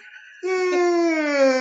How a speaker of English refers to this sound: Well, as I yawn.